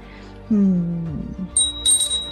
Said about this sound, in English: And now it just rang a bell. You heard it, right?